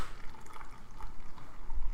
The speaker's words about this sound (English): That beverage pour. I remember. Sounded beautiful.